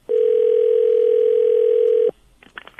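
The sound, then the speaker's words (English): A single steady telephone ringing tone holds for about two seconds at a loud, even level, then cuts off abruptly as a recorded call to the caller's mother connects, followed by faint stirrings of a voice on the line. “So here's a phone call I made last night to my mom,”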